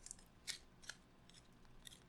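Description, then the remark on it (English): Sticky paper being handled, with a few short, crisp crackles and peels spaced irregularly over a couple of seconds, quiet, with no talking. “You like paper? You like sticky paper?”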